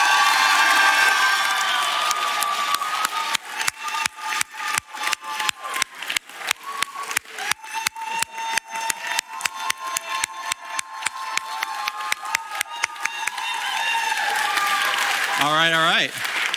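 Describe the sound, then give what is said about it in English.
A large church audience cheers and applauds, with rapid, steady clapping and loud whoops for several seconds before the noise fades and a voice begins to speak. The cheering approves two people officially joining the Whole Life church family. “If you want them to be an official part of the Whole Life family, will you cheer so loud they can't miss it?”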